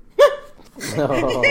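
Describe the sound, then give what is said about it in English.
A sudden, sharp sneeze bursts out once, loud and brief, then after a short pause a person starts talking steadily. “That old viral video where the panda sneezes and scares its mama? Yup. That was you just now.”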